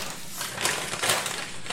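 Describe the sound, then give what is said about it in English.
Crinkly paper rustling, with two sharper crackling bursts amid steady crumpling, as a bottle of bourbon is pulled out of a paper bag. No one speaks. “Are you having pulling out a paper bag? Is that a bottle of Philadelphia?”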